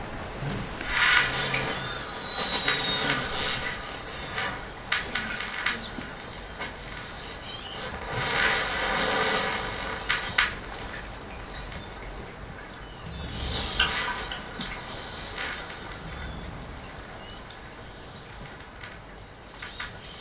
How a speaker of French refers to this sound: Voici un autre exemple de baleine. La baleine beluga.